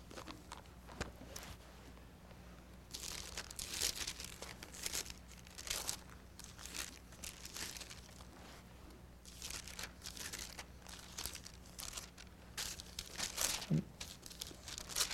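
Paper book pages rustle and flip in a series of soft, crinkly bursts over several seconds as pages are turned to the Book of John, with a faint steady hum underneath and no one speaking.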